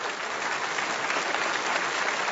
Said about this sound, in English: I'm clapping because that was good. I should have done that.